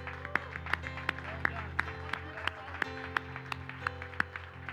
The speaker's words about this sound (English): Come on. Let's all stand up and give the Lord a great big hand clap of praise for these wonderful graduates.